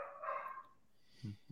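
A dog barks faintly, one drawn-out yelp followed by a couple of short, low woofs, with no one talking over it.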